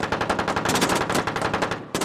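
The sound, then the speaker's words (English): Rapid automatic gunfire from within a cave rattles in a loud, sustained burst of closely spaced shots, breaks off for a split second near the end, then resumes. No voices are heard. “That was indeed gunfire, huh? It came from within the cave.”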